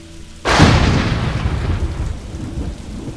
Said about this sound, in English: A deafening explosion hit precisely exactly the same time as the burst of light, followed by sizzling noises.